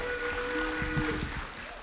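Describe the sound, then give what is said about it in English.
An audience at a worship service applauding a worship team singer after her performance, a dense, steady wash of clapping that holds at an even loudness throughout, with a faint sustained tone lingering underneath. “Come on, give her a good round of applause.”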